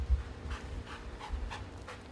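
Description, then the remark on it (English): A dog pants steadily while searching for a helper in a bite suit during Mondio ring training, quick breathy huffs repeating about every half second over a low background rumble, with no one speaking. “training video of Cindy's dog, Rush, doing a search for a helper in a bite suit”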